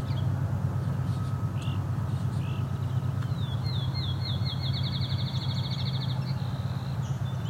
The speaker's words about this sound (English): Appears to be some fledgling song sparrows in an argument.